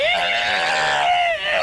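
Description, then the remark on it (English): A person voices a loud, strained, gurgling scream, one continuous wavering cry lasting under two seconds, bleat-like in tone, with no other sounds. “You throw this ball of acid into his mouth, and all of a sudden his tongue just starts to melt out of his head, and you hear this gurgling scream.”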